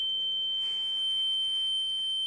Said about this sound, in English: That's like, that's a little annoying. That's like, I didn't like that. That was a little too loud. That reminded me of a smoke alarm. I shut it off.